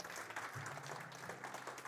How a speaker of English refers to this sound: Can I get y'all to stand up real quick? Man, y'all give God a hand clap, man. Praise for real.